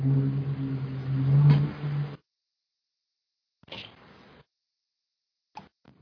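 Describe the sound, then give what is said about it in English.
A bus rumbles past close by, its low droning engine hum swelling for about two seconds before cutting off abruptly, followed by a few faint, brief knocks and rustles. “That was the bus from A Classic Horror Story driving by.”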